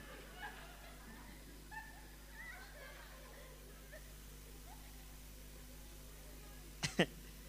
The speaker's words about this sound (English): Take your dog. Take it outside. Go and bark from outside.